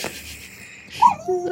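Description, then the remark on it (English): A female dog whines softly, two brief high-pitched whimpers, the second dropping lower in pitch, over faint background hiss and no talking. “Sorry, my dog keeps whining and then she just doesn't want to go.”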